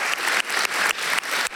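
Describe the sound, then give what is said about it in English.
An audience claps loudly together to recognize national servants standing at their venues, a dense crackling wash of many hands that briefly dips at a steady pulse, about four times a second. No one speaks over it. “We're doing video and clapping and stuff like that.”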